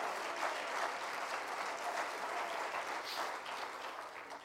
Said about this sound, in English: Come on, clap your hands to him right now. Hallelujah.